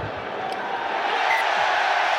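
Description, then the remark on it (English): A stadium crowd at a rugby match between Japan and South Africa cheers deliriously: a dense, continuous roar of many voices that stays loud and unbroken for the whole couple of seconds, with no single voice standing out. “The crowd will tell you again.”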